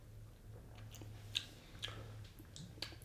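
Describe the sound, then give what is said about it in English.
Someone quietly sips ale from Anarchy Brew Co.: a few soft, wet mouth clicks and swallows spaced about half a second apart over a low steady background hum. “We're a few minutes in and we haven't drunk beer, so we should at least have a sip of this fine ale.”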